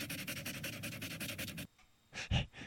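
dog panting

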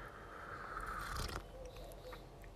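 sipping coffee

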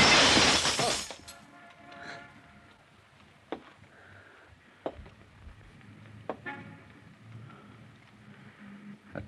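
window glass shattering

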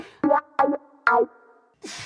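sneeze

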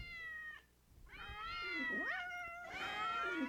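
cats meowing

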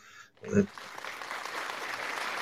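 clapping applause

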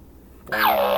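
whip crack sound effect

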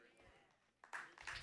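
audience clapping

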